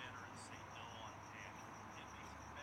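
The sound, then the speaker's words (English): A cricket chirps steadily in the background, a thin high-pitched pulsing trill that carries on without pause. It sounds faint over a soft, murmuring ambient hum. “You hear the cricket, right?”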